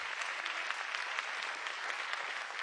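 An audience claps their hands in praise to the Lord, a dense, steady wash of many overlapping claps at full volume without pause.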